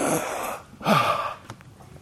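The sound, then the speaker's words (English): Two ragged, breathy gasps for air, fairly loud, the second sharper with a strained vocal edge, then a few softer trailing breaths, as Jonah, swallowed by a whale, finds a pocket of air in the great fish's belly; no one speaks. “Gasping for breath.”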